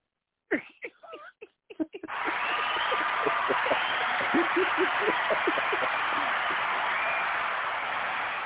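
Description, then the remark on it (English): A stadium crowd at an American football game bursts into cheering after a missed field goal attempt, following a few brief vocal sounds, then holds a loud, steady roar with scattered shouts and claps poking through until the end. “Yeah, where's my crowd?”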